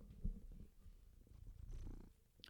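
A male cat purrs in a low, continuous rumbling flutter, steady throughout with a brief soft thump near the start and a faint rustle at the end.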